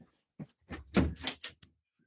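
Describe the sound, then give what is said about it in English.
A door is pushed shut and locked: a quick run of thuds, rattles and clicks over about a second, then a final sharp latch click and quiet. No one speaks. “I just realised I didn't lock that door and my kid's going to come blasting in any minute because I can hear him.”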